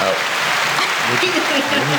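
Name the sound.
clapping sound effect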